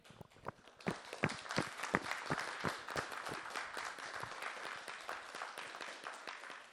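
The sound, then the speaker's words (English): A church audience claps steadily, many hands producing dense, sharp overlapping claps at a brisk rhythm, swelling after the first second and holding at a fairly loud level with no voices standing out. “While we're clapping, I want to give a special thanks to my mom.”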